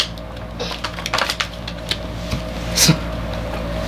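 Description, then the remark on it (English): Playing cards being bridge shuffled in midair: quick snapping clicks build into a brief fluttering riffle, then a softer patter and one last crisp burst as the deck settles, with no talking. “You guys didn't see it, but I actually bridge shuffled cards in midair.”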